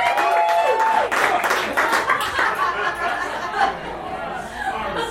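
A crowd claps and applauds steadily as a performer is called up to the mic, a dense wash of hand claps mixed with loud chatter and a few laughs, sustained at an even level throughout.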